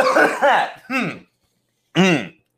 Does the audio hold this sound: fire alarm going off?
no